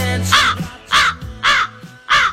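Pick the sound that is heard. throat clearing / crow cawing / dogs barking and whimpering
crow cawing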